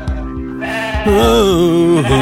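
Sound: sheep bleating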